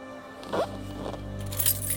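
A short metallic jingle of keys being handed over, a few bright clinks and rattles over a couple of seconds, with a low steady hum in the background and no talking.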